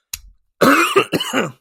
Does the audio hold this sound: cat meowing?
no